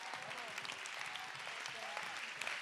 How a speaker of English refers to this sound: Somebody clap your hands and lift your voice. God deliver us.